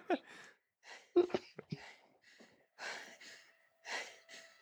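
Heavy breathing from a film trailer: a series of ragged, airy inhales and exhales with a few sharp gasps, coming in uneven bursts over several seconds at moderate loudness, with no talking.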